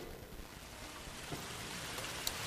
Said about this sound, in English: Well, I think it sounds like a storm might be approaching.